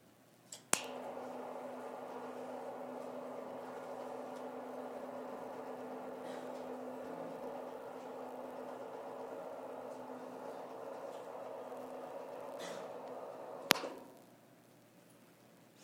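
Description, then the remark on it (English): A chime rung each week at a gathering is struck once with a sharp attack, then rings out in a steady, sustained low hum for over ten seconds before a second crisp strike cuts it off. No one speaks. “Each week we ring this chime in solidarity with people around the world, particularly those who are experiencing loss or fear because of violence or natural disaster.”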